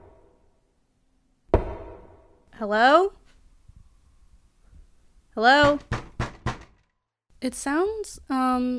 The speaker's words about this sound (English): I heard that knocking, the same knocking, and it was coming from the basement.